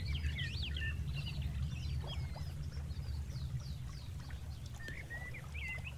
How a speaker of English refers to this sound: Become present of the sounds that you're hearing. Become present of the sounds of the birds, the sounds of nature.